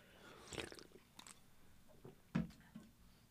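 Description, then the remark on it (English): Quiet drinking sounds: a few soft slurping sips of sparkling water from a can and mouth clicks, then a louder gulp near the end, with faint fizzy hiss in the background and no talking. “Just taking a sip of my, which is in a can, by the way, but this is a sparkling water because I'm a pussy.”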